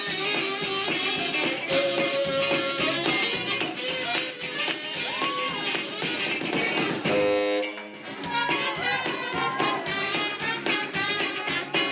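A loud, bouncy live band tune led by tenor saxophone, full of quick honking runs, with a slide whistle player adding a brief sliding pitch swoop partway through before the fast melody resumes.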